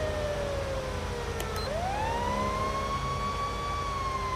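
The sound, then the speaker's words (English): A fire truck siren wails continuously as the truck drives slowly past, its pitch sliding down then sweeping back up, loud over a steady low traffic rumble, with no talking. “Where's the fire truck going?”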